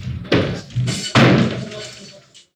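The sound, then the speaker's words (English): A hotel room door is slammed open hard: two loud, sharp bangs about a second apart, the second a heavy crack as the handle hits and goes through the wall, ringing out briefly before fading. “Previn slammed open that door so hard that the handle went through the wall in the hotel room”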